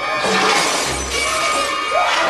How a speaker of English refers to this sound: like, smashing stuff, like, endangering himself with a level of intensity.